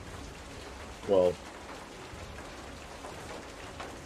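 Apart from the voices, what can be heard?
heavy rain pouring down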